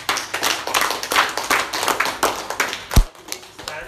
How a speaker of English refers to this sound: Let us give clap offering to our Lord.